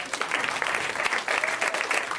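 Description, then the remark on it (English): A crowd claps steadily after being asked to clap if they stole something as a teenager, many hands making a dense, continuous patter of applause at an even loudness, with no voices standing out. “Clap if you stole something when you were a teenager.”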